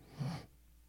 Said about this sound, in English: And you guys on the podcast are getting a lot of sniffle now.